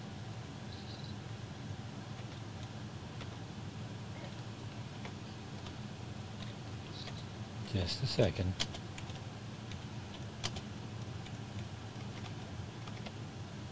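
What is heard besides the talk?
typing on a keyboard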